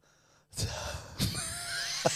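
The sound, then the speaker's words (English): Heavy breathing with two sharp gasping intakes of breath, followed by ragged, wheezy exhaling and a final short catch of breath, with no talking. “You've started breathing a bit.”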